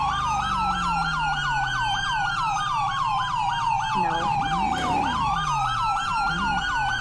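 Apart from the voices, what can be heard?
emergency vehicle siren wailing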